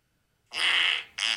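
A high, squeaky fart sound effect called Dead Air blares in two bursts, a drawn-out one followed by a short second toot, loud with no talking.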